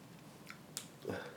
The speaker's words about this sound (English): No, the first bite is sauce. But as you chew... The eel comes through.